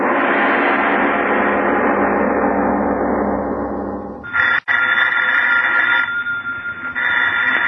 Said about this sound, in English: Miss Goddard, answer the phone, please.